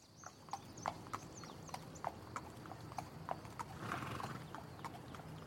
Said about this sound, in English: The carriage kicks off and kind of begins to bumble up over the small little hill, and a few moments later it's kind of the horse is back in its stride and everything's okay, with the team kind of keeping an eye on the road and the woods.